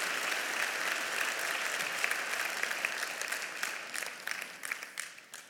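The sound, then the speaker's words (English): A church audience applauds steadily during a service, a dense wash of many hands clapping at a strong level, thinning toward the end into scattered individual claps as the applause dies down. “I think you can give a bigger round of applause than that.”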